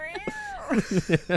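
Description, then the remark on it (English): Someone imitates an angry cat: a drawn-out, wavering yowl followed by four or five quick, harsh spitting bursts in a rough rhythm. “That was a good cat impression.”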